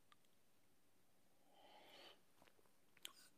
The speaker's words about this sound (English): Fill it with your favorite liquid. I like coffee. And join me now for the unparalleled pleasure, the dopamine hit of the day, the thing that makes everything better. Yeah, it's called the simultaneous sip.